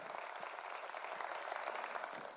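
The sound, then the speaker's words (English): A crowd claps steadily at a church service, applauding SCI Chester for its partnership with God Behind Bars. It is a dense, continuous wash of many hands applauding together at moderate volume, filling the whole moment with no voices standing out. “Come on, let's clap for them.”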